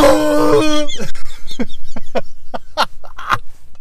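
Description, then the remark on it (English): A person lets out a loud, growling roar imitating a dinosaur, rich and harsh for under a second, followed by a quick series of short, rhythmic vocal bursts like laughter. “All of the people at the checkout have to roar after your order.”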